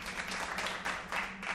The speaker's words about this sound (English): Ugh, clapping? Really? What an inaccurate judge of quality.